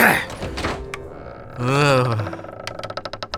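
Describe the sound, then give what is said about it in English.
A stuck basement door being forced open: scuffing thumps, then a long groaning creak as it gives, followed by a quick run of rattling clicks. “Why is this door always jammed up?”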